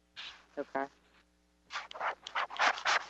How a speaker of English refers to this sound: Oh, I hear some rustling going on. Is that me or is that you? It could have been me.